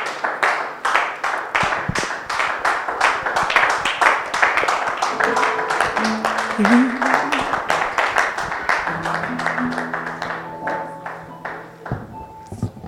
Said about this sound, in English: Why don't you clap your hands together for Jesus and stand to your feet. Stand to your feet.